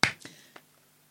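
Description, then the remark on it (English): A few sharp claps: one loud crack followed by two softer, unevenly spaced ones, then quiet. No voices. “Okay, should we clap? Let's clap.”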